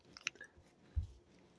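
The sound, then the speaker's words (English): Crunchy chewing of food, with a few sharp crackling bites early on followed by a low, thudding chomp, then quieter mouth sounds. No one speaks. “Crunch.”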